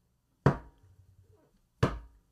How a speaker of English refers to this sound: As we look back, we see this... young 3-year-old boy banging his plastic dinosaur on my friend's high-end Taylor acoustic guitar. That is scary. A kid banging on a high-end Taylor with a plastic dinosaur.